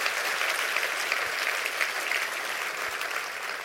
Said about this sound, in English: Clap your hands and rejoice in that. Amen.